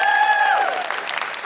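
An audience breaks into a steady round of applause, dense clapping filling the moment, with a sustained whoop or whistle gliding downward over the top before fading back into the clapping.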